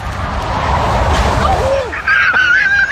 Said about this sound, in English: It's like the bird was wearing a mic. I mean, yeah, you hear it.